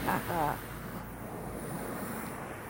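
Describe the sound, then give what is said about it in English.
Steady wind rushes and water washes around a sailboat being steered by a boy, in a continuous, broad roar, with a brief voice calling out at the very start before the wind and waves carry on alone. “He's driving the sailboat.”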